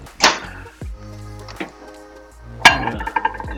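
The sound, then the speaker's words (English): Dishes and utensils clink and clatter as someone finishes washing the dishes, with a few sharp ringing knocks spread out, then a busier cluster of small taps near the end. “We'll let you finish the dishes over there.”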